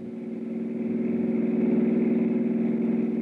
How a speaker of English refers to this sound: From where I stood, I couldn't identify the car that suddenly roared away from the back of the house, but one thing was obvious. The driver was in a hurry, and I was getting nowhere.